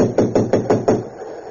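Five quick, evenly spaced knocks rap on a locked train compartment door, each a dull, solid thud, followed by a short quiet stretch with no voices.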